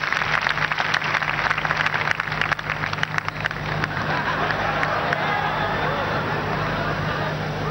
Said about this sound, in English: Clap for them, please, as they come forward.